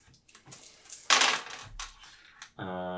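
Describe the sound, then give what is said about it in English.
Dice clatter and tumble across a hard surface in a quick burst of sharp clicks, loud, rolled for a logic skill check in a game, followed by a brief steady tonal hum at the end. “So you just roll your logic dice.”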